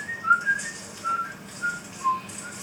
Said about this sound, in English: Yeah, I've always thought it's slightly odd that he's whistling away Scott Joplin. Because at this point it would have been so old.